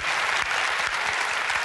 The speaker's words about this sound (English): Listen to the applause. And, you're not hearing that on The View, are you?